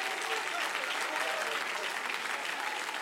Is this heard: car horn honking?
no